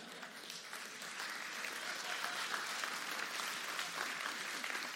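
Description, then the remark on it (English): A church audience breaks into steady applause after hearing that $43,540 was given by the pastoral staff, a dense crackle of many hands clapping that swells after the first second and holds at a fairly loud level without talk over it. “You're going, oh, I got to hold on to my wallet, and I got to clap.”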